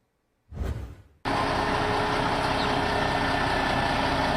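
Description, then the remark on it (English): A short whoosh gives way to a big truck engine idling, a loud, steady diesel rumble that holds unchanged to the end with no voices. It is the Phillies' equipment truck, which has just arrived in Clearwater for spring training. “Their equipment truck just got to Clearwater over the weekend.”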